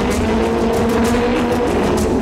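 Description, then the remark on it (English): Loud, steady engine roar from several racing cars at the start of a Grand Prix, a dense mechanical drone with revs rising as the starting flag goes up and down, broad noise, continuous throughout with no voices. “The revs rise as the flag goes up, down, and there away.”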